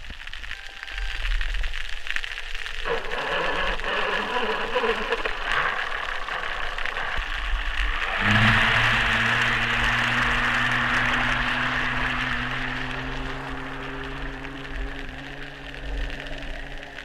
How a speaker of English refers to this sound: So you're really giving us a sense here of what it sounds like when we humans sort of smother this ocean noise. Yeah, and you know, an important thing to note about that is just one very small outboard engine.